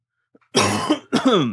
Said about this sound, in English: then you have to cough, so that's perfect.